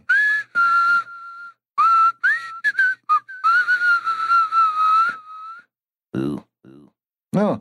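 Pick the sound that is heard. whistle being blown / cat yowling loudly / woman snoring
whistle being blown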